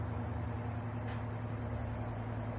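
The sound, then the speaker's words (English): Steady low engine rumble from trucks passing in the background, with a brief hiss around the middle like an air brake, continuous traffic drone and no talking. “So ignore the trucks in the background.”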